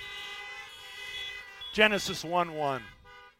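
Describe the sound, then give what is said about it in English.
Several car horns blare together in a steady, sustained chorus as church listeners honk to show they have read Genesis 1:1, then a man's voice speaks over the fading honks. “If anybody ever read it, honk your horn if you've ever read it.”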